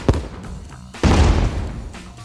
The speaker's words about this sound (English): I will cue in honor of late great Hunter S. Thompson, the sound of a cannon.